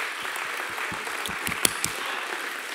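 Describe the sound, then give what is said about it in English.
A church audience claps for Jesus in praise, many hands blending into a dense, even wash of applause with a few sharper individual claps standing out, fairly moderate in level and without voices. “Come on, you can clap like you think he's here.”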